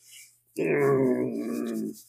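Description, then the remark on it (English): A dog lets out one long, drawn-out grunting groan while licking a person, lasting over a second before cutting off, with only quiet background sound around it. “getting his Valentine's Day kisses from the dog.”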